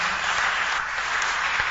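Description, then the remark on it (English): A church audience claps for people as they are leaving, a dense, steady wash of applause that stays loud and even throughout with no voices standing out. “Oh, clap for them as they are going.”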